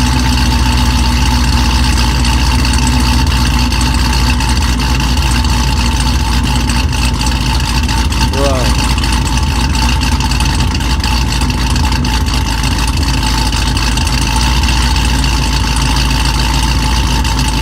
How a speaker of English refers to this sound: No M3 can, or M5 or M2 can hold a candle to what that car can do at idle.